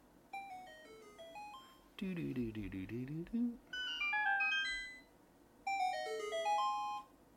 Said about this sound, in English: But here, like if you open a secret door or you explode a secret cave or whatever, here's the sound. Secret.